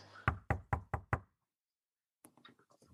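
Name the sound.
knocking on a door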